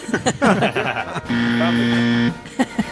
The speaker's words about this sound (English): Oh, that buzzer is in the same key as the music. That was nice. That's right. Yeah, that was F flat, I believe.